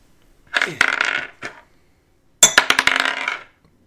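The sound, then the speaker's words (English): Dice clatter and tumble across a hard tabletop in two separate rolls, each a quick burst of sharp clicking bounces that rattles briefly and settles, fairly loud with no talking. The dice are rolled for perception checks in a game, with one shared set of dice. “Can everyone roll me a perception check, please? Yes. Ugh. We only have one set of dice.”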